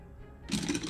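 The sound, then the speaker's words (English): After a brief hush, a handful of dice rolled for sneak attack damage clatter and rattle together in a dense, bright burst of rapid clicks that continues to the end, with no one talking. “Holy smokes, that was a lot of dice.”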